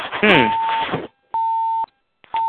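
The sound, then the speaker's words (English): A steady electronic beep tone from a participant's phone on a conference call repeats at regular intervals, each about half a second long with gaps of silence between, the first one overlapping a voice talking over a phone-quality line. “Probably somebody fell asleep and not realizing their phone doing that.”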